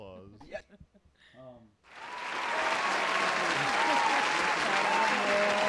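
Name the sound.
applause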